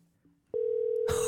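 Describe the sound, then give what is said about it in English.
A phone's ringing tone for an outgoing call starts abruptly as one loud, steady, single-pitched hum, heard as if through a handset, with a burst of rustling noise joining near the end. “Dude, it's like I have a phone to my ear.”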